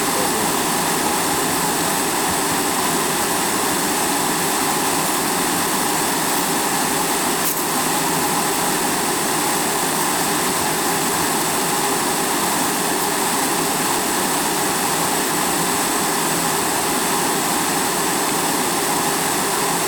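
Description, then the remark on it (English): Hydroelectric turbine blades recorded underwater with hydrophones through ice holes in a frozen river: a loud, unbroken mechanical roar with a steady layered hum running through it, holding constant for the whole stretch with no voices. “Turbine blades will cut up fish and other animals that end up there, and obviously they produce a lot of noise, sound, under the water.”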